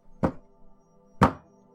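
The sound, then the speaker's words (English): Two heavy, booming bangs on a door, about a second apart, loud, with a faint low hum lingering in the background between them. “As you're going up there, you hear several heavy bangs on the door.”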